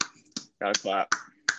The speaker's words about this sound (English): Got to clap. Round of applause. Got to clap.